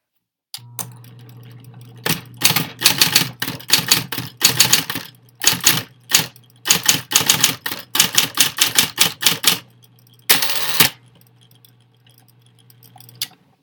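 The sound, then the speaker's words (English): Rapid bursts of mechanical typewriter keystrokes clatter in uneven runs, with brief pauses between flurries and a louder strike near the end, over a low steady hum; a very large typewriter in the newsroom of the Montague Reporter. “We have one very large typewriter.”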